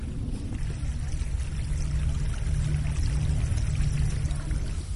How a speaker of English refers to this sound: Having just talked about water, now that we've come down to Mount Davis Path, I can actually hear some of it trickling down the hillside, and that just shows how quiet this is.